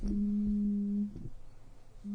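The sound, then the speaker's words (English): A phone rings with an incoming call from North Carolina: a steady, low electronic tone holds for about a second, stops, then starts again after a short pause. No one speaks. “I'm getting a phone call from North Carolina.”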